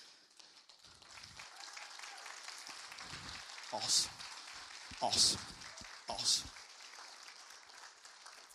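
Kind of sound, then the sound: crowd, audience clapping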